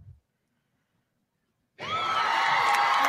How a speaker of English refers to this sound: Here are the cheers from the crowd.